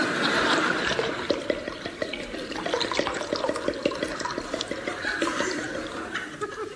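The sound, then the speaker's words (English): A drink is poured steadily into a glass, a continuous gurgling, splashing trickle lasting several seconds with no voices over it. “Enough? Just a spot more.”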